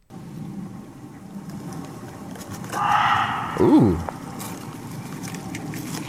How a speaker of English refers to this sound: In Southeast Asia, there are muntjac, aka barking deer, which also sound pretty freaky, but of course, Southeast Asia.